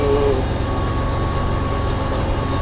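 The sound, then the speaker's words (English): A tractor engine drones steadily with a deep, throbbing low rumble and faint whining overtones, holding an even, fairly loud level throughout as it runs with a groomer, smoothing out footprints on muddy diamonds, its front blade not set down. “However, my tractor's not set right with the groomer.”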